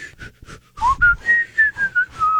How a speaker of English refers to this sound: I can whistle both breathing in and breathing out. Yeah, see, do it. That's out.